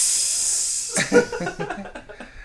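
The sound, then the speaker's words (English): A bright, hissing cymbal wash rings on for about a second, then gives way to a busier run of sharp crashes and taps mixed with tonal notes, moderately loud throughout. “All that cymbal play.”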